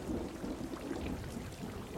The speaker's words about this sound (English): But at the same time, it has this therapeutic sense of washing away this grime. And that's something that I feel that Londoners can really relate to, that moment when it rains in the summer.